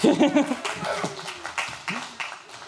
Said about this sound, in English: yeah, you can applaud. Yeah, you guys can.